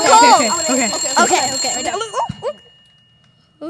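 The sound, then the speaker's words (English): A phone rings for the first-ever incoming call, with steady, high electronic tones for a couple of seconds while several voices chatter and exclaim excitedly over it, then the ringing stops and all goes quiet. “You got the phone. It's the first ever call.”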